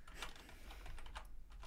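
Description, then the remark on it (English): Quick, irregular clicks of someone typing on a computer keyboard, a burst of several keystrokes over a low, steady background hum, fairly quiet. “I was typing all by myself. You need to do it on the computer now.”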